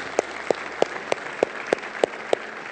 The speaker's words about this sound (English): Can we give God a round of applause today for what he's done? Thank you, Jesus.